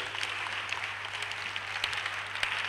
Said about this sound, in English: Yeah, you are free to clap if you want to clap. It's free. You don't pay.